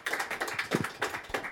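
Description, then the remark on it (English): Audience applause welcoming a poet at a Melbourne Spoken Word and Poetry Festival event at the Resistance Bar in Hawthorne. Many hands clap at once in a dense, steady patter of crisp, overlapping claps that stays fairly loud throughout the short stretch, with no voices. “Give her a warm round of applause.”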